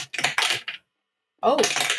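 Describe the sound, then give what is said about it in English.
Dice clatter across a hard table in two rattling bursts separated by a short silence, fairly loud, with a brief vocal sound mixed into the second burst, rolled for damage in a game. “And so dice things.”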